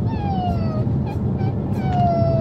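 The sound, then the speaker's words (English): A person's voice on Irish television imitates their dog Bella crying when they eat dinner: two long, high-pitched whines that slowly drop in pitch, with a few short whimpers between them, over a steady low background rumble. “and today I'm doing an impression of my dog, Bella.”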